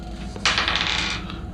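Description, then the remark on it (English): A short burst of bright clattering as two small dice, rolled for a stability test, tumble and skitter across a hard surface, rattling for about a second before settling, moderately loud. “I have 2 dice.”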